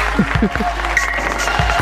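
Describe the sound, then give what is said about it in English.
An applause sound effect: dense, steady clapping that keeps going for the whole short stretch without fading, with a faint voice murmuring underneath. “The applause never stops.”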